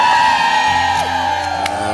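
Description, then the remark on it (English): A large crowd of people outside, like a concert crowd, cheers and whoops continuously on a Friday morning, with high-pitched shouts rising above a steady, loud roar of voices throughout. “We got like a concert crowd out there, man. It's bumping.”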